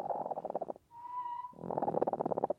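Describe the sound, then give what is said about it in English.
An angry broody hen named Henny growls in a low, pulsing, raspy churr on a hot day, breaks into a brief steady whining note, then resumes the grumbling growl, fairly loud with no talking. “I hear we've got a broody hen. Hi, Henny. Oh, you look very angry.”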